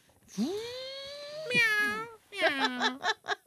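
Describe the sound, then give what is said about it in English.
A person imitates a cat's meow, as a girl does at the very end of a song: a long drawn-out mew, a second rising-falling one, then a quick run of short clipped meows. “And like the very end, the girl goes, meow.”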